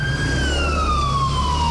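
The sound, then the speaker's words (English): A loud ambulance siren holds a steady wailing tone that slowly glides downward, over a low engine rumble, with no voices. “Once the ambulance got there”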